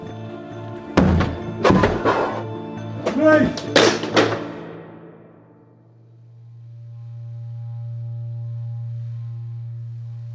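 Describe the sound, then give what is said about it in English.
Police officers smash in the door of a flat with a burst of heavy, loud thuds and crashes over a few seconds, then everything gives way to a low, steady droning hum. “Martin gives the signal, and they smash down the door.”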